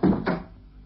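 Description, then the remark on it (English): A locked door is worked open: two dull, heavy wooden clunks in quick succession, then a short fading rumble into quiet, with no voices. “I issued orders that this door was not to be locked.”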